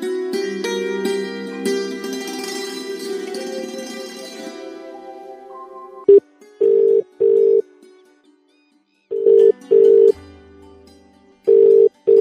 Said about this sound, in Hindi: मैं फोन लगाते लगाते थक गया हूँ, इसका फोन भी नहीं लगता आजकल।